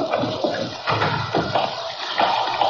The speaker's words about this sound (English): Oh, you're taking a shower right now.